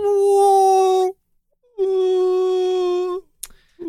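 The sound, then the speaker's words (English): A man's voice imitates whale calls: two long, loud, steady moaning tones, each over a second long, separated by a short pause, then a quick breath or click. “And he's doing his whale calls.”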